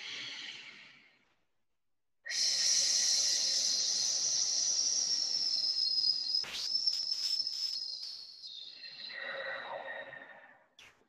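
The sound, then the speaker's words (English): A short breath in through the nose, a brief pause, then a long, steady hissing "sss" exhale through the mouth like a snake, lasting about eight seconds, high and bright, gradually tapering and wavering before it fades out. A breathing-exercise demonstration. “And this breath pattern is going to be in through the nose, and it's out through the mouth, making an S sound like a snake as long as possible.”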